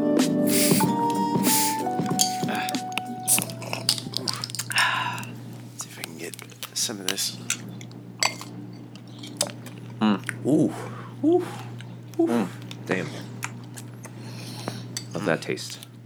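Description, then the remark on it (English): Close, wet lip smacking and mouth clicks right up against the microphone, coming in irregular little bursts after a brief tonal sound fades at the start, with no talking. “Trying to get some lip smacking directly into the microphone right now.”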